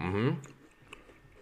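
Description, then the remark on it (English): A brief hum-like vocal sound, then quiet chewing of medium-heat beef jerky with a few soft crunchy clicks spaced irregularly, fairly faint overall. “You can hear that crunch.”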